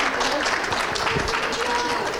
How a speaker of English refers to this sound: Thank you. Big round of applause for these two ladies.